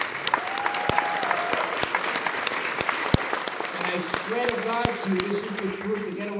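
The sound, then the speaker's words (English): A crowd bursts into sustained applause, dense clapping filling the whole stretch at a steady loudness, with a few voices calling and murmuring underneath toward the end. “Give a round of applause for this.”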